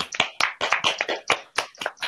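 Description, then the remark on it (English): A brief round of applause for a new permanent member of a show: a small group clapping in sharp, uneven bursts, roughly ten crisp claps over two seconds, fairly loud with no talking underneath. “Give a round of applause one more time.”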